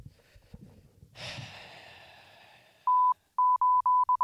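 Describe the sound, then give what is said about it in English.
A soft rushing burst fades out, then a string of loud, steady mid-pitched beeps sounds off in short and longer pulses with an uneven, Morse-code-like rhythm. “We're not again. Morse code.”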